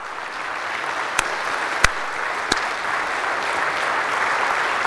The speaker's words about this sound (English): Do you feel that inspiration, the difference from one clap to all of us clapping? When we do it together, we're inspired.